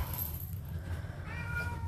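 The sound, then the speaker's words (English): A male cat lets out a single drawn-out meow near the end, clear, over a steady low background hum with no one talking. “My cat would rather starve to death and fucking eat food he doesn't like.”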